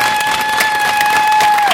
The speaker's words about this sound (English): So, Without further delay, I'm going to ask you to give a big round of applause.